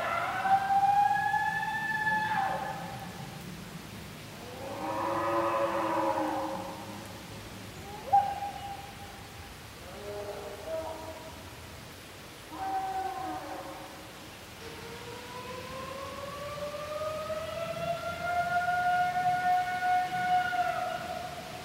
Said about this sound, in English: back to the howl we played at the beginning